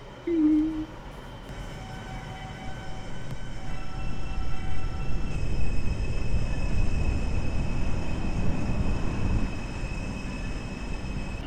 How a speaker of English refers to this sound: This is a Brooklyn-bound skip stop D train. The next stop is Question Street. Stand clear of closing doors, please.